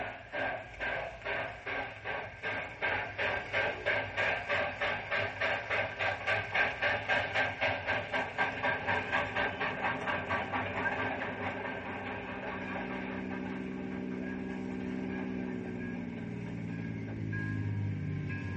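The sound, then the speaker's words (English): A train pulls away on its rails, a fast, steady rhythm of chugging beats giving way to a continuous rolling rumble and a rising mechanical drone, heard alone without talk. “Here's the engineer's signal, and I'm on my way.”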